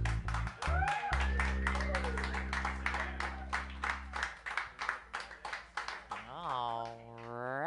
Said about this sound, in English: It kind of feels good to hear recorded applause, doesn't it?